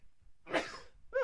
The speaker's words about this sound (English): Excuse me, I got to sneeze.